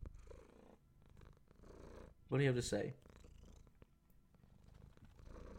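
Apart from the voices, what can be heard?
cat purring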